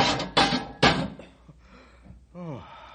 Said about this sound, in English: Release the pole and we'll slam the cage door. Now.